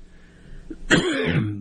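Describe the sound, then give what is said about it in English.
A single loud gag cough bursts out suddenly at the thought of watered-down mayonnaise, a harsh retching throat sound that trails into a strained, rasping exhale, with no talking. “That wasn't a sick cough. That was a gag cough, just thinking about it.”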